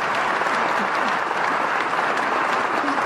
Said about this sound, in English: It is fitting that was an applause line for our sponsor.